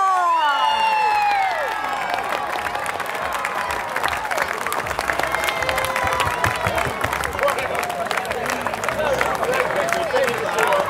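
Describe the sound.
A crowd at the 2017 Australian Barbecue Wars in Port Macquarie bursts into sustained applause and cheering for the grand champions, Barbecue Mafia from Brisbane, dense clapping with whoops and excited voices rising above it, steady and loud across the whole stretch.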